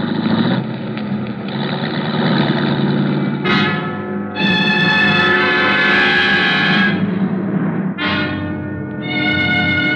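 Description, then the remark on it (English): A police car's engine rumbles steadily as it careens into a driveway, broken by several loud, long horn blasts, the longest lasting a few seconds, with no voices. “A police car careened into the driveway”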